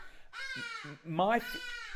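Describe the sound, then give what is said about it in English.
Hadeda ibis calling: two loud, drawn-out nasal wails with a harsh, strained, almost crying tone, the second rising higher and briefly louder, heard on their own without talk. “If you're hearing birds, that is the traditional hardy dar, which is the bane of every Joburger's existence.”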